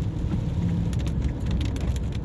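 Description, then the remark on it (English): Heavy rain from an afternoon storm pounds steadily on a car windscreen while driving along a highway to the airport, a dense drumming over a low engine and road rumble, with scattered sharper drops ticking through the constant wash. “It's the rain hammering the windscreen as we drive along the highway.”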